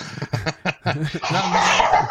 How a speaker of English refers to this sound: Now my dogs are fighting. Oh. Savage, a gnashing of teeth. Ooh. Blood? Okay. No. No, they're pit bulls. They just scream and howl. Oh, it's because of the food.